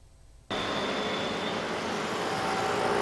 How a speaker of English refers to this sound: It's 9 a.m. at a busy intersection in Kaohsiung. Traffic restrictions go into effect as construction workers start to move this rain tree to a new home to make space for Phase 2 of the light rail project.